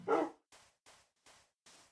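A dog barks five times in a steady rhythm, the first bark loud, the following four softer and evenly spaced, with no talking.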